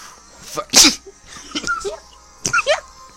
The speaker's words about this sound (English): Fuck, I hate sneezing.